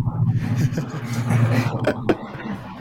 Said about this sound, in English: And oh, here comes the aeroplane.